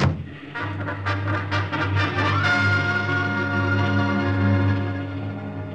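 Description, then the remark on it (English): A loud, steady motorcycle engine roar climbs in pitch as it speeds through enemy-held territory, pursued by a car full of Nazis firing at it, with a burst of sharp, rapid bangs like gunfire in the first couple of seconds. “That motorcycle ride through enemy-held territory with that car full of Nazis firing at me was wilder than the stories in the comic books I used to draw for.”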